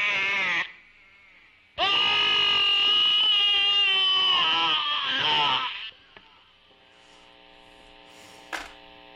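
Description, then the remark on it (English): An electric guitar mimics a screaming child: a brief shrill squeal, then a longer loud, wavering wail that settles into a quieter sustained ringing note. No one speaks. “You can also make the screaming kid sound.”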